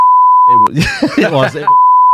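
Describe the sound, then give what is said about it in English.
A loud, steady censor-style beep tone sounds, breaks off briefly while a voice speaks for about a second, then resumes at the same pitch until the end. “For legal reasons, I'm going to have to beep that, obviously, because I don't want to get him to get in trouble.”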